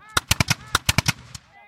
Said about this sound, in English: Then suddenly, shots break out late in the 12 o'clock hour.